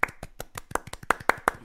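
A brisk, old-school 1950s-style round of applause: about ten sharp, crisp hand claps in quick, steady succession, fairly loud and with no voices over it.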